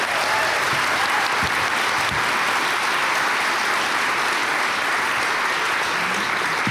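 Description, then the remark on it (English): A crowd applauds steadily, a dense wash of many hands clapping at an even, sustained loudness for several seconds with no pauses. “It was lost in the applause.”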